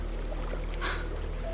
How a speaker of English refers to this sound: After Barbara tied up the boat, we made our way along the shore.